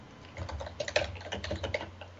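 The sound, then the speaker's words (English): Rapid, uneven clicking of keys on a computer keyboard as a person opens and edits a spell list, a steady stream of crisp taps over a low background hum with no voices. “I am making lots of typing noises.”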